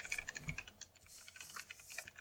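Rapid, irregular clatter of keys on a noisy computer keyboard, fairly loud, with sharp clicks tumbling over one another for the whole stretch and no voices.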